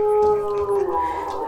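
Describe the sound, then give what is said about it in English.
A person loudly imitates a howl, holding a long, steady, tonal note before it wavers and breaks up near the end. “Like, I create a huge howl.”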